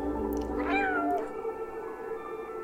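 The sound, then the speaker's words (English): A single drawn-out meow from a cat wearing a backpack in a video game trailer set in a robot city, with a rising then falling pitch, clear, over a steady low ambient hum that continues after the call fades. “I mean, this cat's got a backpack on.”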